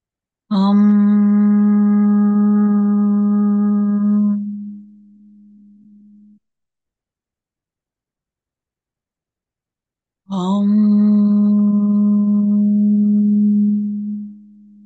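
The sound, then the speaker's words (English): A low, steady vocal hum, the throat chakra sound, is sustained for several seconds and fades. After a stretch of silence it comes back as a second long, loud, resonant tone. “The sound is hum.”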